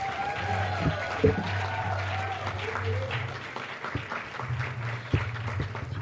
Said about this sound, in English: So give my family an applause.